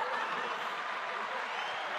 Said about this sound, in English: It's a little clap. Clappy clap for you guys.